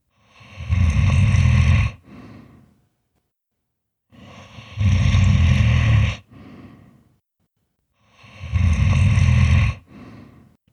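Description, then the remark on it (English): Three loud, deep, rumbling snores from something deep inside a dark cave, in a slow, steady rhythm, each a long rattling inhale followed by a short, softer exhale, with silent pauses between them and no talking. “Something was snoring deep inside the cave.”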